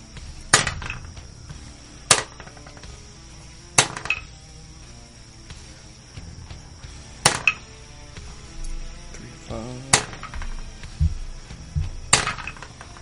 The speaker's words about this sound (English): That's a lot of the dice rolling.